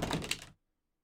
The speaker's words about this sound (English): Hey, kiss the dice for me, y'all. Just... Okay, fantastic. Here comes the lucky dice.